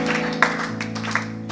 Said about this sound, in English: Oh, are you clapping or what?